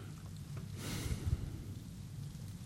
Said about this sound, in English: Love hearing all those pages turn. Bring your Bibles to church.